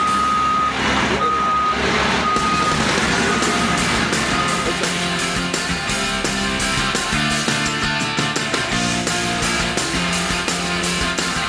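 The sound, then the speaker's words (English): A wheel loader reverses at Madison Granite, heard from inside a truck, its backup alarm sounding a few steady, evenly spaced beeps over a loud, rumbling diesel engine and clanking machinery noise. “We got the, what is that guy called? The loader.”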